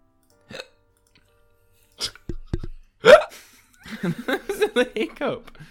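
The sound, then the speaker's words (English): A few sharp, abrupt hiccups spaced out over several seconds, followed by a stretch of voiced sounds from a person. “A little hiccup.”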